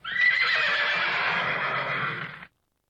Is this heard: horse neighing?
yes